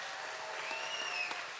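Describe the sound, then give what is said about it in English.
An audience at CLC applauds the Palm Sunday Kids Choir, a dense, steady wash of many hands clapping with no pauses, joined briefly by a thin, high whistle-like tone partway through. “Palm Sunday Kids Choir. Can we give them a big hand? Come on, we can do better than that.”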